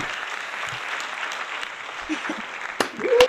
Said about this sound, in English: Oh, I love the clap. That's awesome.